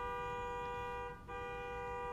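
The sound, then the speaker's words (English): A car horn honks outside in a long, steady blare, breaks off for a split second, then sounds again just as strongly, with no one speaking over it. “Even the fucking car just agreed. He said, that's right.”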